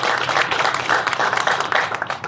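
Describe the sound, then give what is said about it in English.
Steady applause from an audience for a man credited with the nearly built Amazon building in North Versailles, many hands clapping in a dense, continuous patter that stays fairly loud throughout, with no voices breaking through. “So let's give him a round of applause, please.”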